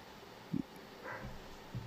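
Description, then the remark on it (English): Faint, muffled barking from a household's dogs: a quick cluster of low barks, then a higher yelp and one more soft bark, over a quiet background hiss. “Our dogs are barking, by the way.”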